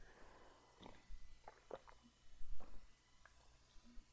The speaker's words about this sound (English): And I'm going to take a sip right now. Just why don't you guys take a sip with me?